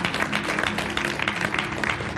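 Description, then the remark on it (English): A church audience claps their hands for God in a steady, dense wash of applause that keeps a fairly even loudness throughout, with some faint voices mixed in underneath. “Clap your hands for God.”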